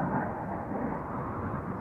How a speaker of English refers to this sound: Oh, another plane. Goddamn.